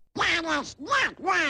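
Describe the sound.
A raspy, sputtering Donald Duck voice quacks in three quick, garbled bursts, loud, a voice imitating a duck's squawking speech, from a 1942 Disney short film commissioned by the government in which Donald Duck marches around his house listening to the radio and talking back to it.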